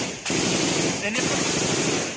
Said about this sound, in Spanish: Hay una fuerte balacera.